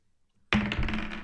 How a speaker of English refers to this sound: Dude, just roll the dice 4 times. Just get above a 13.